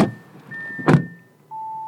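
Three people getting into a car at the start of a three-hour road trip from Denver toward Colorado's lowest point in Yuma County: a rustle of movement and a solid door thunk, followed by a steady electronic chime tone starting up inside the vehicle. No one speaks.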